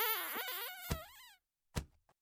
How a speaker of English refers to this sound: Ah, I found something. A door. A handle. Let's just give this a pull.